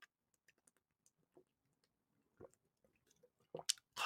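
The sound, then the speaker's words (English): Someone drinks water, with quiet wet mouth clicks and small sips, then a few louder gulps and swallows toward the end. No one speaks. “Water's incredible. God damn it. I didn't need bottled water.”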